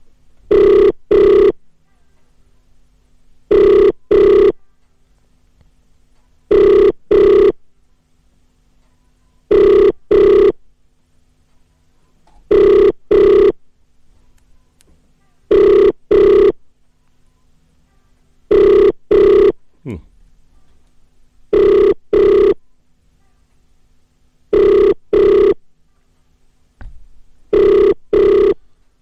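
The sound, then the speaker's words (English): A telephone ringback tone on an outgoing call repeats in steady double bursts, about nine pairs spaced evenly over half a minute, clear with quiet gaps between them and no talking. “It's ringing.”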